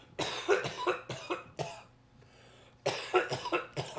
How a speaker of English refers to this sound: You still cough like that, eh? That's what I don't like about the bong. That doesn't look enjoyable. It is. Why don't you take a smaller bong and not cough?